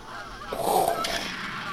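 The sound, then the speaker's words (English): A goose gives a loud, nasal honk, followed by a quieter call against a breezy outdoor background, as geese come in during a goose hunt. No one speaks. “I've seen 7 geese come in.”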